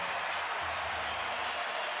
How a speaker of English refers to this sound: Reverse layup. Up and good. He beat Drummond to the rim. Doc Rivers will call yet again another timeout. And listen to the crowd roar here.